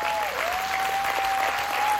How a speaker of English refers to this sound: Look, y'all give him a hand clap as he comes.